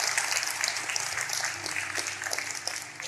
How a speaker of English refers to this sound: we got 2,000 people in the chat. Let's clap for that. We love that.